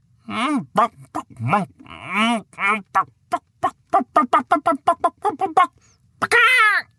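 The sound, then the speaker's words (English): A hen clucks while laying an egg, in a rising series of drawn-out calls, then a fast run of short, rhythmic clucks, ending with a loud squawk after a brief pause. “And once again, the hen laid a glorious egg of pure gold.”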